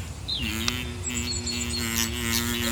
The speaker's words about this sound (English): Hang on. What's that sound? It's a bee. There it goes, buzzing from flower to flower. Up, down and all around.